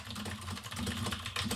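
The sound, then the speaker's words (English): Rapid, loud clacking of a computer keyboard being typed on at a desk, the speaker's loudest keyboard, a dense stream of sharp keystrokes with no pauses, prominent with no one talking. “I should get a quieter keyboard for this desk, huh? I think it's fun that everybody knows when you're typing.”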